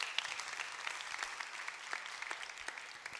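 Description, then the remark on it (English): An audience claps steadily, a dense patter of many hands with scattered sharper claps standing out, holding an even, moderate level throughout without talk. “Why don't you give Nathan a clap?”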